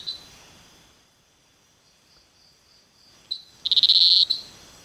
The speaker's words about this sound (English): It is small. It's really small. It's a very weirdly artificial sounding frog. In the sense that it doesn't. It almost doesn't sound organic. Like not coming from a creature.